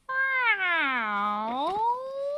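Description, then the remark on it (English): A single long, drawn-out cat meow, loud, its pitch sagging low in the middle before rising again at the end, with no other sounds around it. “The house of Mr. Cat.”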